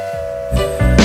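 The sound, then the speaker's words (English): A steam train whistle holds a steady, loud tone, joined partway through by rushing bursts of hissing steam that swell twice near the end. “It's coming, it's coming. It's the lucky train.”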